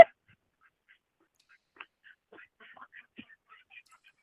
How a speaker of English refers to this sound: You wanna hear some ducks?